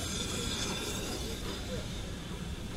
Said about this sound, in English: Now 76017 is pulling into the platform. So we've had a change of locomotive on the train.